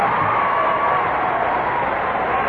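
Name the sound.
audience cheering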